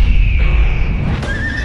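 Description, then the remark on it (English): A horse whinnies in a short, wavering high cry that rises near the end, heard over a dense, rumbling background without any talking. “Something very wrong with that horse.”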